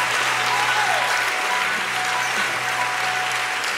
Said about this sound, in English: Let's all stand and give the Lord praise. Come on, clap your hands unto the Lord, all ye people, and shout.